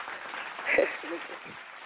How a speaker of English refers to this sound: Let me go ahead and throw some claps on it.